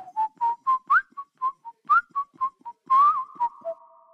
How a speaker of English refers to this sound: This is probably my favorite of all the tracks, and it's doing so many things. I love that it enters with a whistle.